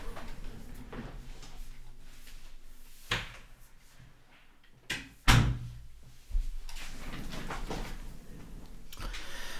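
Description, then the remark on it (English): A door is pushed shut with a sharp, solid thud, preceded by softer handling knocks and followed by a quieter bump, with faint background noise and no talking. “Let me close the door.”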